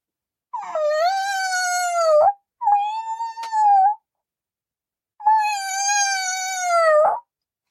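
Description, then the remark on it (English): A loud, eerie wailing cry from within a tomb, at first muffled and broken like a child's sobbing, then swelling into long, loud, continuous screams with brief breaks between, rising and falling like an animal's anguished howl, heard alone without any talking. “I was answered by a voice from within the tomb, by a cry at first muffled and broken like the sobbing of a child, then quickly swelling into one long, loud, and continuous scream, utterly anonymous and inhuman.”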